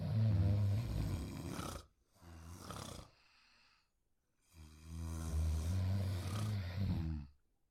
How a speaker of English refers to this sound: Everybody should hear some snoring right now, correct?